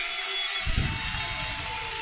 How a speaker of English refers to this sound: And as you can hear, the Canberra crowd pretty happy about the win.